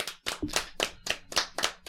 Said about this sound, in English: Are we just gonna keep clapping